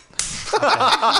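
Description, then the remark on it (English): A single sharp slap on a person cracks out, followed right after by a short burst of voiced sound, like someone yelping or reacting. “Slap him.”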